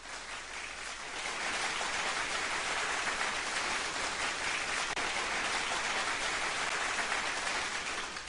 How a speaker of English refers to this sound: There you go. There's your slow clap for American Idol.